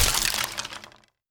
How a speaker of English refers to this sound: No! You idiot! The board laid in two pieces, broken over Jackson's knee.